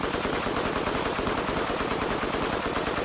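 Rapid automatic gunfire rattles nonstop for about three seconds, a dense, loud burst of shots fired in quick succession with no pauses and no voices.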